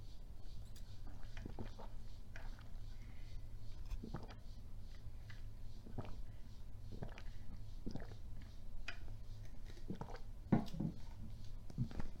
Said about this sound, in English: That's how you know that that flavoring's good, because I just keep gulping it down. I'm taking big gulps, if you know what I mean.